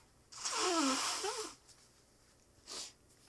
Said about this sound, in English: I'm not going to pause again. Just going to blow my nose.